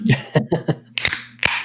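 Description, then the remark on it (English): A person sneezes: a few short voiced catches of breath, then two sharp, loud, hissing bursts about half a second apart. “Bless you.”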